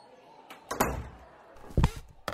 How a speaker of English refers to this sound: It was at that moment the stage door opened and in walked his best mate.